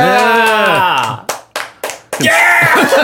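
Four sharp, evenly spaced hand claps ring out loud, each with a short echoey tail, set between stretches of sung or drawn-out vocal sounds before and after.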